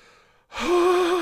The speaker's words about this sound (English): Breathing hard here.